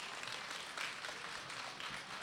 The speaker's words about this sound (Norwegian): Jeg synes vi må gi han en kjempestor applaus.